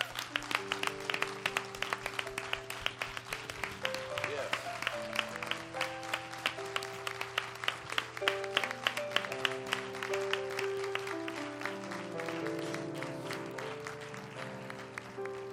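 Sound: audience hand clapping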